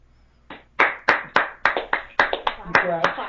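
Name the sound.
hand clapping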